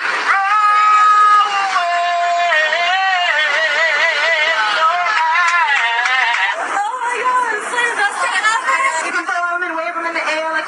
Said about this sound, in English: It was reason to cheer on airplanes around the country and for some impromptu celebrating.